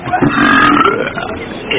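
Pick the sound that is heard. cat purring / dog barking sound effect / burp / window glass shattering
burp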